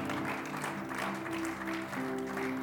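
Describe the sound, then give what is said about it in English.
A church audience claps in a dense, steady burst of applause as a clap offering to the Lord during a sermon, filling the whole stretch, with sustained keyboard or organ notes held underneath and no one speaking. “Somebody give the Lord a good clap offering.”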